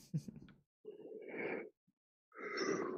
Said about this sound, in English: Ugh. Stop yawning.